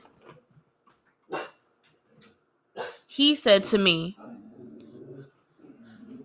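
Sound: dog barking and growling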